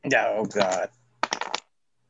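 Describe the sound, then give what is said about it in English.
A person talks briefly, then after a short pause a quick burst of dice clatters and scatters across a hard table, several rapid clicks over about half a second, as the dice are rolled for a dodge roll in a game. “Okay, no, the dice are spread.”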